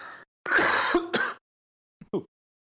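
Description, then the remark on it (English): A fairly loud burst of coughing and throat clearing, a few harsh rasping pushes in quick succession, then after a short pause one softer, brief clearing sound. No one speaks. “Oh, man, I just coughed now all of a sudden.”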